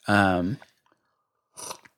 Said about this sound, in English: Sorry, just taking a little sip of my afternoon tea.